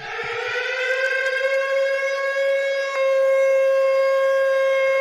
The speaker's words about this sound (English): I'm looking around. I'm like, is there going to be like a siren? You know, is a plastic tent going to come down around me?